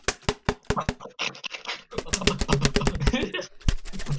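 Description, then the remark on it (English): An empty plastic water bottle with a balloon stretched over it is thrown around, banging and clattering in a quick, irregular run of sharp knocks and thumps mixed with brief crinkly, hollow scuffs. “I put the balloon on the water bottle. So I just throwing it around.”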